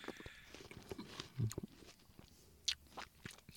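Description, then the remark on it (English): Wet chewing with irregular crunchy bites and smacks, someone working through a mouthful of a juicy pepper-coated watermelon cube taken from the rim of a cocktail, fairly quiet apart from a few sharper crunches near the end. “He's chewing a lot.”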